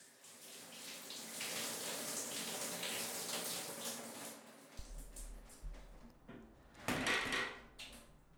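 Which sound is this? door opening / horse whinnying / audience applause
door opening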